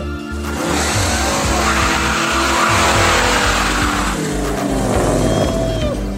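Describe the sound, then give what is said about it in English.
A car engine roars and revs loudly, with tires squealing and skidding throughout, the noise holding steady for several seconds without any talking. “The American cars are crazy and they're fun.”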